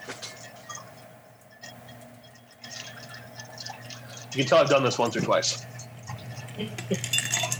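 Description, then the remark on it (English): A spoon with a twisted knurl stirs about four decent-sized ice cubes in a glass, making a quick run of bright, rattling clinks and ticks that swell for a second or two, while a man keeps talking throughout. “Is your spoon actually spinning like this”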